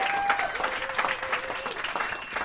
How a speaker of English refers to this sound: It is the 25th year for Exclaim. All right, a round of applause for Exclaim.